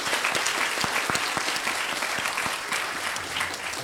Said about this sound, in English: It's an incredible crew, and they have worked so hard this weekend. So let's give all the Midtown Scholar employees a round of applause.